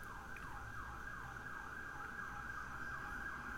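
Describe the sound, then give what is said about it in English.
An emergency vehicle siren wails outside in a rapid, repeating up-and-down sweep, getting closer and coming right by, over a steady background rumble of traffic, with no voices. “Listen to that siren out there.”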